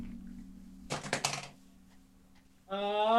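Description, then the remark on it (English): Dice clatter across a table in a quick burst of rattling clicks lasting about half a second, fairly loud over a low hum, followed by a voice starting up. “Fuck, I'm just throwing my dice.”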